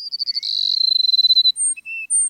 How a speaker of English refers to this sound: The sun rising over a South Texas grassland finds a flock of sparrows, like these Cassin sparrows we're hearing, perching atop a mesquite bush. They're awaiting the sun's first warming rays.